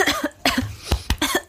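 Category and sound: human body sound, coughing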